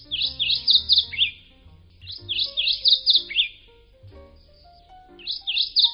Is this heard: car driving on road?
no